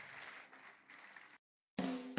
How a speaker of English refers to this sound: Yeah, let's give the Lord a big hand clap this morning.